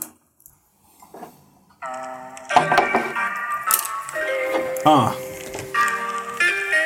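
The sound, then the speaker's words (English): A tinkly, melodic music track starts up after a quiet moment, with bright chime-like tones and a steady ticking rhythm, sounding like a beat played from a phone speaker. “Let me just pull my phone out to get a beat here.”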